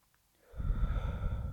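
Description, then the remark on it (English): A single deep inhaling breath begins after a brief quiet moment, swelling into a steady, airy rush that lasts about a second. “Taking a breath in.”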